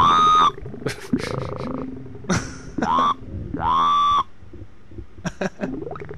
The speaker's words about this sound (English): It's one of the Budweiser frogs that didn't make it on the show.